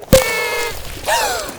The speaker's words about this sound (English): A confetti cannon? Oh, for the love of gumdrops! That was a surprise for Puddles! Now I have to get all the confetti back inside.